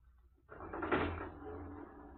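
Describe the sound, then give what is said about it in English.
Lift doors slide shut with a rumbling, scraping rush that swells quickly and then fades into a low mechanical hum, without voices, as the passengers work the lift themselves. “We will work the lift ourselves. Get in, gentlemen.”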